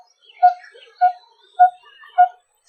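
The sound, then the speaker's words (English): A coppersmith barbet's tuk-tuk call, sounding like a coppersmith hammering on copper: four evenly spaced, hollow, metallic notes repeating about every half second, clear against a quiet background with faint chirps. “This is the coppersmith barbet. The tuk-tuk sounds as if a coppersmith is hammering on copper.”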